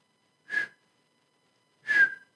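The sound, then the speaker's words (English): Two short whistled chirps about a second and a half apart, a human imitation of a smoke detector's low-battery beep that went off every 2 seconds while moving out, each a brief high tone that dips slightly in pitch. “And as I was, like, moving out, my fucking smoke detector went off.”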